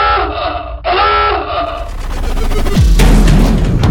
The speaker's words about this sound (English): What was that? Another ship just crashed into us!